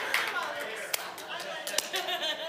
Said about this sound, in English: Who's clapping?